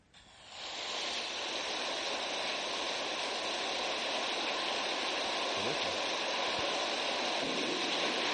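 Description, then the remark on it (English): Rain and thunder: a steady, dense hiss of heavy rain fades in over the first second and then holds at an even, loud level throughout, with no voices and no distinct rumbles standing out. “Rain and thunder.”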